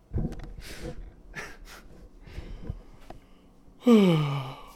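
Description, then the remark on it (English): Near the end, a loud yawn stretches out with a breathy, voiced sound that slides downward in pitch. It follows a few seconds of soft breathing and faint clicks. “I'm yawning, so I'm guessing it's not.”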